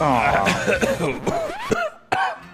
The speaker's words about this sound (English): He's coughing up his drink.